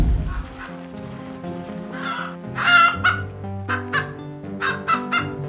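Hens cluck in a busy chorus on a farm with about 50,000 hens and 200 milking cows, a string of short overlapping calls rising and falling over a steady farmyard hum, moderately loud with no one speaking.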